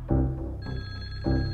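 telephone ringing

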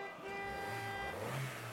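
car engine revving

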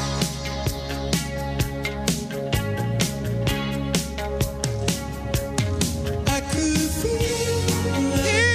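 pop song playing

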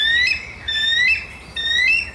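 bald eagle call

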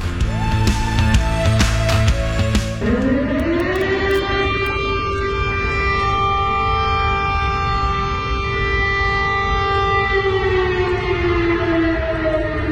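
air raid siren wailing

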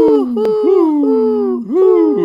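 owl hooting

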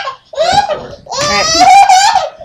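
children screaming

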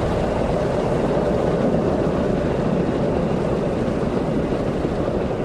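airplane

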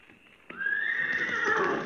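horse whinnying

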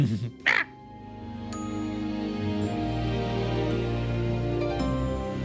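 ravens cawing

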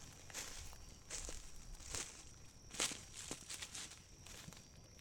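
approaching footsteps

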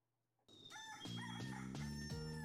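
rooster crowing

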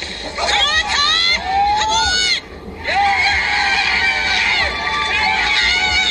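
bowling strike

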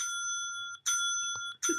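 bell being rung

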